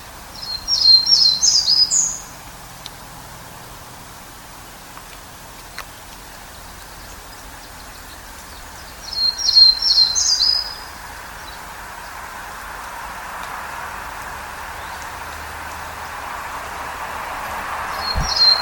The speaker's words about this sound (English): So that was the first variation of Townsend's Warbler song, and here is the second.